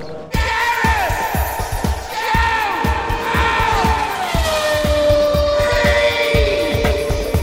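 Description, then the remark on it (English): A Williams team racing car engine whines loudly, its pitch rising and then sliding down as it drives past alongside a pensioner over the last few laps, with a steady low rhythmic thumping underneath and no voices. “spirits up and help him with the last few laps, the Williams team have arranged for one of their cars to drive alongside the pensioner for these last few laps.”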